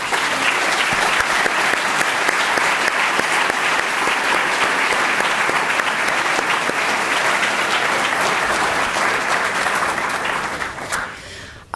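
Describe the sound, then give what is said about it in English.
A large audience claps steadily and loudly for about eleven seconds for a family asked to stand up, a dense wash of many hands that holds even before fading out at the end. “So I would like to ask the entire family to stand up, and let's give them a warm round of applause.”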